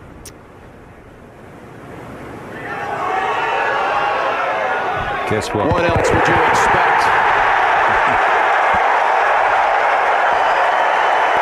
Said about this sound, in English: All right, here's the audio of Tiger Woods. He's not going to win the tournament, but he makes birdie on 18. Listen to the crowd.